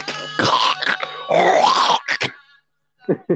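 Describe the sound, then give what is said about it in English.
A voice imitates a grunt with a string of rough, guttural, strained vocal bursts, two longer growling stretches followed by short choppy grunts and a brief pause before two final clipped grunts. “I'm a grunt.”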